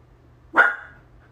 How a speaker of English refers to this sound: He's a good boy. However, I don't like the barking, and I don't know what he's barking at, and I'm just like, ah.